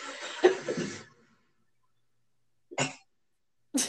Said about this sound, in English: Oh, I'm going to sneeze.